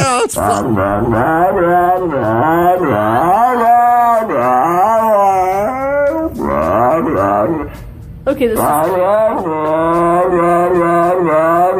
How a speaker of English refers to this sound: And when I checked into it, it's actually a video from a few years ago, but it's a dog that says blah, blah, blah.